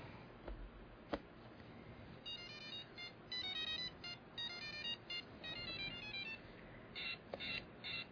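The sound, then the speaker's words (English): Bright electronic beeps play a quick chirpy jingle of stepped high tones as a handheld Pac-Man electronic game powers up, with a few sharp clicks and a steady hiss underneath. “I think that's the Pac-Man game that I've been looking for, because I had it.”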